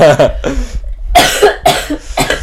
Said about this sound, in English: Stop interrupting me with your coughs, please. I'll cough on you.